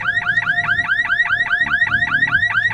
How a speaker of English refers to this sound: The alarm, it rages on.